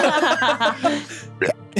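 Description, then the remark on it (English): A person fakes dry heaving: strained, gagging vocal sounds in a loud stretch, followed by two short, sharp retching gulps after a brief pause. “Just, maybe just dry puke. Heave a little.”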